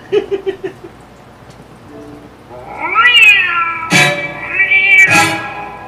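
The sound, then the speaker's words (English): A giant cat lets out two loud, drawn-out meows with rising and falling pitch, wailing, following a few short soft pulses at the start. “If you're ever on this planet and you see a kitty that big, do not go, kitty, and run to it.”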